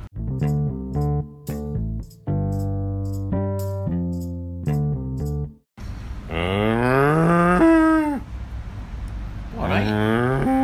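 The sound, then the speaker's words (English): A string of steady electronic tones gives way to loud cow moos, two long drawn-out calls with rising and falling pitch over a rough, breathy background. “Oh, so mine was a cow and you just killed me.”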